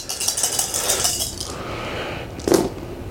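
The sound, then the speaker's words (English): A handful of dice rattles and clatters across a hard surface for about a second and a half, followed by a brief louder knock as one settles, with no talking. “It's many, many, many dice.”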